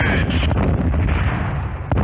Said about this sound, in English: Listen to some of this audio. Hold on. It's a lot of explosions.